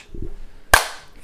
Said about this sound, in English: We're elevated hand slap for 6 months. We're doing it. But get the Foley artist to put in the hand slap sound.